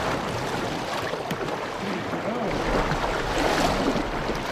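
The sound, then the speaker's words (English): A boat drifts down the South Fork of the Snake River in Idaho, with steady rushing and lapping water and a low rumble that swells in the second half; no voices. “We caught up with the former vice president in one of his favorite spots, drifting down the South Fork of the Snake River in Idaho.”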